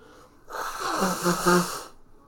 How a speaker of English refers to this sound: Me blowing my nose. Now I can hear myself.